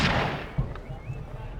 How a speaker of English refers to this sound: After a few minutes, you hear a gunshot, a very loud gunshot.